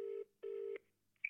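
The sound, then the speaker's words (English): Two steady touch-tone beeps from a phone keypad as a number is dialed to call a grandmother, each about a fifth of a second with a short gap between, followed by a brief, fainter high blip. No voices. “No, I'll ring me Nana. Pass the phone.”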